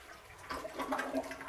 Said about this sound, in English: If you'll give me just a minute, I've got to flush the toilet rather violently.